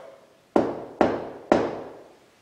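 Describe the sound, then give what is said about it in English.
Three firm knocks on a solid surface, evenly spaced about half a second apart, each sharp with a short ringing decay, amid quiet; a person knocks three times as a signal, hoping for three knocks back in reply. “So I'm going to do three knocks, and then we want to hear you knock back.”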